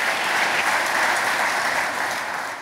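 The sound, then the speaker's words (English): A large audience claps steadily for the company's employees across the world, a dense wash of applause that holds loud and even throughout before easing slightly at the end, with no voices breaking through. “A huge round of applause, please.”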